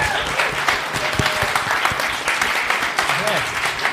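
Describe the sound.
A crowd claps steadily and loudly, a dense, continuous wash of hand claps with a few faint voices and whoops mixed in throughout.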